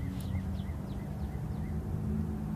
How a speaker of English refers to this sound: I'd rather hear that bird. What is that, a singing bird, a marking bird?